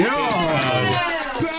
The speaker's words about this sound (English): Awesome. That was a good bell.